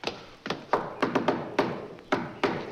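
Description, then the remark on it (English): Knocking in the shave-and-a-haircut rhythm: a quick run of five sharp raps, a short pause, then two final knocks, crisp with no voices. “that'll be enough knocking.”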